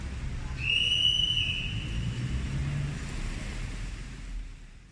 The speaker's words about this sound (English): Najib's outrider was not able to clear traffic for him as there was a line of cars dropping passengers off at the court lobby. The guard blew his whistle several times in an attempt to hasten the queue, but Najib still had to wait his turn.